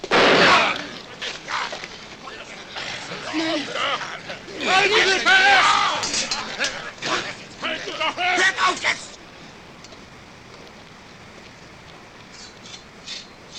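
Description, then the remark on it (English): In a film scene where the character Ursua is shot, a sharp, loud gunshot bursts out at the start, followed by more sharp cracks as people on his side stand up to try to stop it, amid shouting and a confused crowd commotion, then the scene settles into a quieter murmur. “And, you know, there's a couple more gunshots as people on Ursua's side sort of stand up and try to stop it from happening.”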